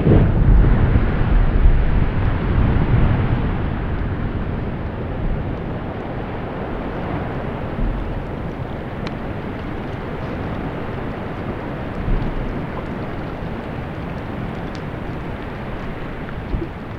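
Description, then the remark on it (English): A deep, heavy roar rumbles loudly at the start as a huge mass of glacier ice breaks off, then settles into a sustained, broad rushing wash of sound as the ice displaces the water, with faint sharp cracks scattered through. “And what kind of happens with the really big ones, you have some gunshots and some booms at the beginning. And then it's like you turned on Niagara Falls, because most of it is like it's displacing the water.”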